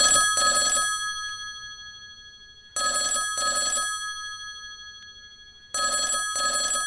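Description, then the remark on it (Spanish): A telephone rings in three clear double bursts, each pair of bright trilling rings separated by a pause of about a second and a half, alone with no talking. “Abrimos el teléfono y damos paso a la primera llamada.”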